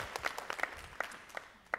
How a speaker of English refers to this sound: And so can we just give them a round of applause just to say thank you for all their work? I'm just so thankful for them.